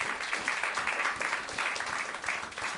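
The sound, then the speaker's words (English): A small live audience applauds steadily for a few seconds to welcome the first speaker at a storytelling event, a dense patter of many hands clapping at moderate volume with no voices over it. “Give a small round of applause for our first speaker,”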